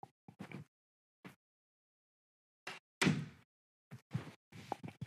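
A person closes the door of their room at home with one solid thud midway through, surrounded by brief scuffs and handling noises before and after, with short silences in between and no talking.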